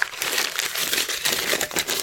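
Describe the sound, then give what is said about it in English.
A hand rustles around inside a paper bag holding a 12-ounce can of Lewitt Brewing Company Grimlock Porter beer, making a steady crinkling and crumpling for about two seconds with no one speaking. “I'd like you to reach into your paper bag and tell the world what magical beer the Beer Fairy left for you today.”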